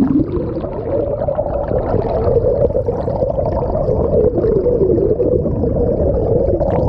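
Underwater recording of bottlenose dolphins: a steady watery rush with wavering, moaning vocal tones running through it, continuous for several seconds and fairly loud, with no talking.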